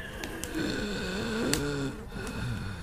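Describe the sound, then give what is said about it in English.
A voice imitates raspy, labored breathing: a continuous rasping wheeze with a wavering pitch that drags on for a few seconds, with no words spoken. “You two both hear, amidst the lots and lots of flies, you also hear this, like, very raspy breathing sound.”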